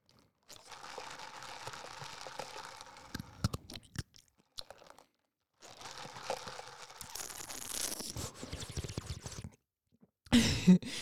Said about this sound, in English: First off, let's take a little sip of coffee. I have been really off my coffee lately.